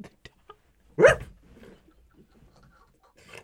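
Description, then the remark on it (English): A single sharp, loud dog bark rings out, preceded by a few faint clicks and followed by quiet background rumble. “The dog noticed.”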